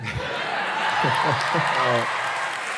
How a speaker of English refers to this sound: No. Don't applaud. I mean, it encourages him. The biggest thing about like them applauding right now is that you have to have heard that joke.